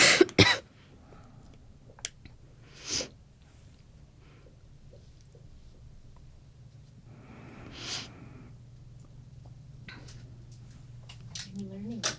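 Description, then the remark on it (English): A few harsh coughs and throat-clearing sounds from a speaker with a tickle in the throat come in separate bursts a few seconds apart, with low background hum and quiet stretches between them. “Sorry, I'm just going to wait for the water so I can complete my thought without coughing through okay.”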